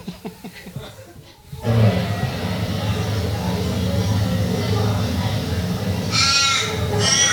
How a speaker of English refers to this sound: I think we have an Icelandic sheep or the Australian crow. We've got the Australian crow.